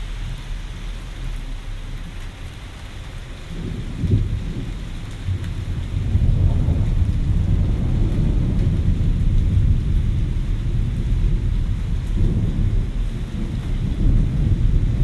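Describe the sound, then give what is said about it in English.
Steady, heavy rain pours down in a continuous hiss in Reading, Pennsylvania, around 1:29 a.m. on a Tuesday, with deep rumbles of thunder swelling underneath and growing louder partway through. No one speaks. “On this rainy Tuesday morning, 1:29 a.m., coming to you from the Reading, Pennsylvania boogie down.”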